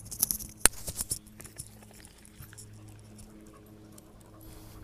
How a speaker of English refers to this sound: Sorry, my dog is literally going insane right now.